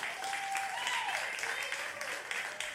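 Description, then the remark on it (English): A church crowd claps steadily in a dense, continuous wash of applause at moderate volume, with a faint thin tone and soft voices murmuring underneath. “I don't think I've ever been applauded for before.”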